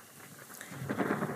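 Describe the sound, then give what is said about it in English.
A stormy rumble swells over a steady wash of rain-like noise, growing louder and fuller toward the end, like thunder rolling in. No voices are heard. “On a stormy night, Moira sits alone, overlooking the sea.”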